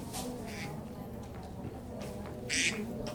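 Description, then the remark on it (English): A short burst of duck quacking plays as a phone alert tone, with a few raspy calls in quick succession, the loudest near the end, over faint background murmur. “That would be a phone call. Hang on. And a reminder that I'm going duck hunting tomorrow.”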